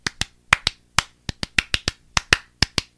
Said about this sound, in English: Well, first, we got to give claps